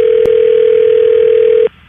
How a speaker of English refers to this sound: All right, here, I'm dialing out.